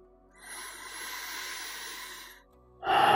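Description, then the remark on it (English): A long, slow, deep breath drawn in steadily over about two seconds, airy, followed after a short pause by the louder start of another breath, part of three long, slow breaths. “Let's bring ourselves into the moment with three long, slow breaths.”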